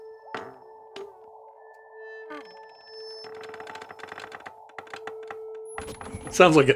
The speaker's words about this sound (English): After every episode of Omnibus comes out, it says how many times your chair squeaked. Oh man, you're breaking the account right now. Usually I don't have to work that hard, but I can't even tell if that's one long squeak or 30 short ones.